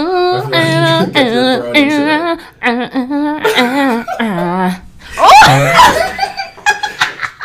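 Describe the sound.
A voice imitates a wolf howl in a string of wavering, yippy vocal cries, loud, followed by a burst of breathy laughter near the end.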